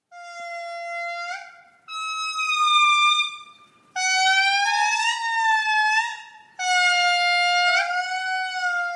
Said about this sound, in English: Oh, it's so beautiful and haunting and also a little bit like whale sounds meets air horns. Right? It was definitely not what I expected. These recordings are from scientists who collected the songs from lemurs in Madagascar